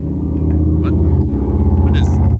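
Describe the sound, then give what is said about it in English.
A loud, continuous motorcycle engine roar from a drag race going on outside, with a deep, rumbling growl that holds steady throughout, its pitch wavering slightly, with no voices over it. “Oh, there's a drag race going on outside. Are you parking your Harley or something?”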